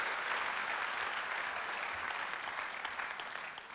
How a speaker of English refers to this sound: That's great. Let's give him a clap, shall we? Awesome to have you here.